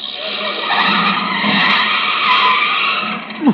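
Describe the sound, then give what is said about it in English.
A car brakes hard after police tell it to pull over, its tires screeching in a sustained, loud skid that lasts several seconds before ending with a brief thump as it comes to a stop. “Sensitive brakes.”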